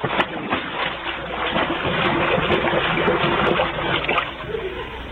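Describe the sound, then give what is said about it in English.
A new Cadillac car crashes into a swimming pool with a loud splash, followed by several seconds of churning, sloshing water that stays loud throughout as the car sinks to the bottom. “Remley, it's heading for the pool.”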